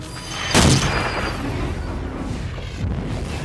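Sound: artillery fire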